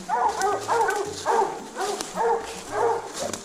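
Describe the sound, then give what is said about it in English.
Hunting dogs in the woods bark excitedly at a raccoon they have cornered, in a rapid, steady string of loud, ringing barks, several per second, with no voices over them. “We can just follow their barking. It only takes us about 3 minutes to get to where the dogs are.”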